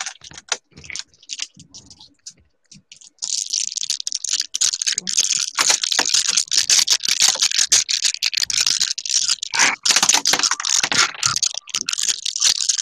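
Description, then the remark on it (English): A handful of dice rattles and clatters, starting with a few scattered clicks and then building into a dense, continuous shaking with sharp bright impacts for about ten seconds. “What is that, ice? No, dice.”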